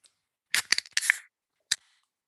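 Beer cans crack open: a quick flurry of sharp metallic snaps with a bright fizzing hiss, then, after a brief pause, one more crisp pop. No one speaks.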